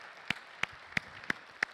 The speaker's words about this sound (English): And we should be more excited about all these things. Can we just clap and thank God for that?